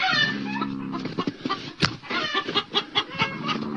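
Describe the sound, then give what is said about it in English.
Agitated chickens in a chicken coop cluck and squawk in a steady, overlapping chorus after a lynx was carried into the coop, with one sharper cry standing out partway through and a run of rapid clucks toward the end. “These guys are pretty upset over there.”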